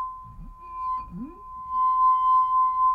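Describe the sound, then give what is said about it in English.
A glass rings with one clear, pure tone that holds steady and bright throughout, over faint low rumbling and a couple of brief sliding sounds early on. “Look at the sound waves that just made. That was beautiful. Look how the resonance.”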